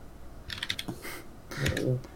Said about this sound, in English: Don't mind my keyboard.